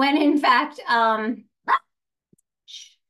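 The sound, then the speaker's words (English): A puppy barks several times in quick succession, high, yappy and fairly loud, then lets out one short yip after a brief pause before things go quiet. “excuse me, that's my puppy barking.”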